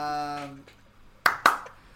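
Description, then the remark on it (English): Two sharp, loud hand claps in quick succession, following a short sustained voice at the start; the claps are crisp and bright, then silence. “Folks who have issues with noise and that complain the podcast is too loud, I'm so sorry about the claps.”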